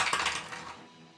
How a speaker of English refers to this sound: So again, I'm going to roll the dice to see what he does here. I'm going to use Eric Kent's Dice Tower, Desert Kiss.